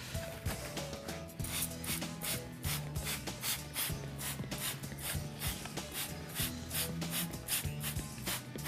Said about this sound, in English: And so we need to spray that with a proprietary insecticide. And here I've got an organic insecticide, so that's not going to harm the environment. But I need to really spray it thickly to get the mealybug completely covered.